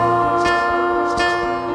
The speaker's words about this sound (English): So ding dong, there's the doorbell.